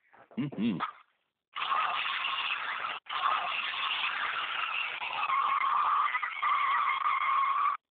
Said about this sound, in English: That's us getting the old truck started up. It looks like we're firing on all cylinders. How many cylinders are in this truck anyway?